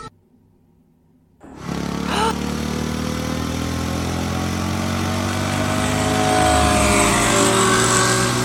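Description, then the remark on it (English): After a brief near-silence, a vehicle engine roars to life and drives steadily onward, weaving past cars, fallen trees and hurricane debris, a loud, continuous rumble with a whining pitch that rises slightly as it speeds along. “Fletcher weaves past cars, fallen trees, and various hurricane debris.”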